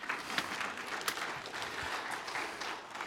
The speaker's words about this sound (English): Yeah, you can clap. I heard somebody trying to clap.